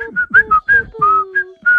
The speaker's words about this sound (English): Do a little whistling, beep.